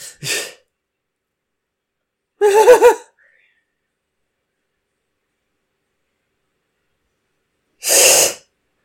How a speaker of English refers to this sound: I like how that rat just sounds horny.